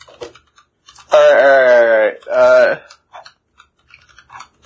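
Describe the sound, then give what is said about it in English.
A person yawns loudly, one long drawn-out voiced groan followed by a shorter trailing one, with faint clicking and mouth noises before and after. “Yawn.”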